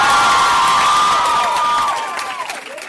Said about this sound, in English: You guys, it's her first time. Big round of applause